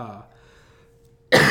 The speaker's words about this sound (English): sorry about this coughing. I'm really sorry.